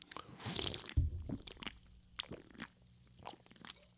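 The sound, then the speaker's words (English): Someone takes a sip of a drink, with a wet slurp followed by several soft swallowing and mouth sounds, quiet, with no talking. “Time for a sip.”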